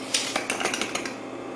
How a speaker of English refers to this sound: Sugar painter Chen Wenbin pours sugar crystals into the pan and adds water.